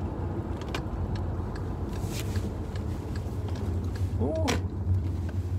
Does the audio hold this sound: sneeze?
no